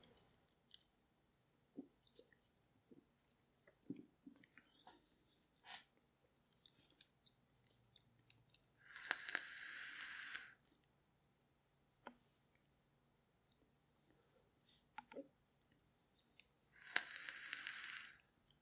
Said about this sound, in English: Now I'm going to get another couple of sips off my Coke here.